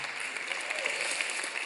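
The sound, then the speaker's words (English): A small audience claps for a couple of seconds, a steady patter of overlapping hand claps at moderate volume with no voices over it. “See, in 1 Kings, all three of you clap.”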